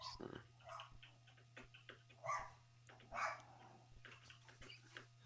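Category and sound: animal, dog barking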